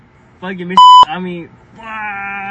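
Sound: censor bleep over speech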